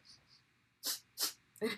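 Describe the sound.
A person imitates a small dog's sneezes as the dog sneezes out weed smoke it sniffed: three short, sharp, breathy bursts in quick succession, with a few soft hissy puffs before them.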